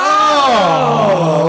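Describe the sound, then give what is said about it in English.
A person vocally imitates a scream of disappointment: one loud, sustained cry that starts high and slides steadily down in pitch, ending as a low, groaning tone. “Whereas, imagine a scream of disappointment.”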